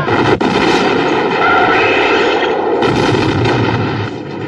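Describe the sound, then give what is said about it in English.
A loud explosion: a sharp crack opens a dense, roaring blast that rumbles on steadily for several seconds before easing slightly at the end. No voices. “Cue explosion.”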